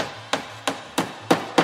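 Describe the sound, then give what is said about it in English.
Five sharp, steady hammer blows strike wood at an even pace, each a crisp knock with a brief ring, fairly loud, with no voices, while a stage is being set up on a desk. “Okay, gotta hammer this over here.”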